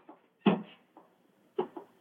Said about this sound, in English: Look up there in the gallery. The door's opening.